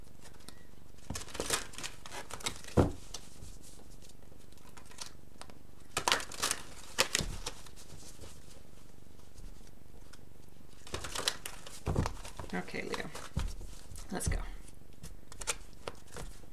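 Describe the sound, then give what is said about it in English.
Tarot cards are handled and shuffled in several bursts of crisp, papery riffling and soft slaps, with pauses between, while a voice speaks briefly. “So let's get the cards. Oh, there's still one more on the table over here.”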